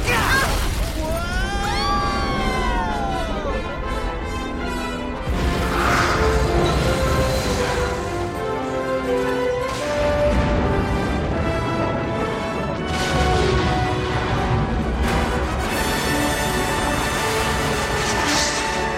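Loud cannon fire and a barge exploding, heavy booms and crashes bursting repeatedly through a dense, roaring din with whooshing sweeps, sustained throughout.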